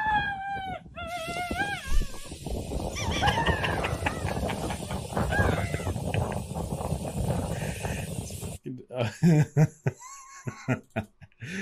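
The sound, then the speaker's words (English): A recording is played back: a loud, high scream rings out at the start, then gives way to a long stretch of raucous, overlapping laughter from several people, ending with someone talking. “Just got to hear that scream one more time.”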